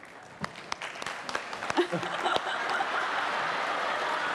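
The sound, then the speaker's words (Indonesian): Audience applause for a surprise guest on the show Mata Najwa starts with a few scattered claps, then swells into steady, dense clapping that holds at full strength to the end, with a faint chuckle early on. “Kita kasih tepuk tangan dong untuk tamu kejutan Mata Najwa.”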